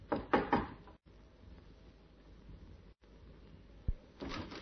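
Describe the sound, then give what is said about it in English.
An inspector gives three quick, firm knocks on the wooden door of a small flat in a good residential district. Then it goes quiet apart from faint background hiss, with a single dull thump and some shuffling near the end. “The urge to try out the key in his pocket was almost overwhelming. But instead, he knocked.”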